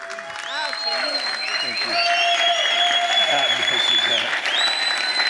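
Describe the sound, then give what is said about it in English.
Sustained applause from a standing audience at Spring of Life Fellowship welcoming a guest bishop, dense clapping steady and loud throughout, with scattered cheers and voices mixed in along with a high sustained tone above. “Let's stand up and give him a welcome.”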